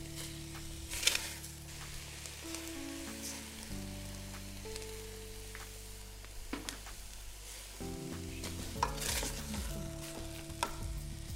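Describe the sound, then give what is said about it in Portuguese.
Tomato, onion and pepper sautéing in a pan for a few minutes until soft, cooked without olive oil and with a little water: a steady crackling sizzle with bright spattering pops, plus a few louder stirring scrapes, behind low tonal background music and no talk. “Refogue o tomate, a cebola e o pimentão por alguns minutos até ficar suave, até ficar macio.”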